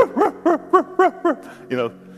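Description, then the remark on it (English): A person imitates a dog barking with a quick run of about seven voiced yaps in a steady rhythm, fairly loud, ending on a longer, higher bark. “You know why dogs bark at night? Because they're talking to each other.”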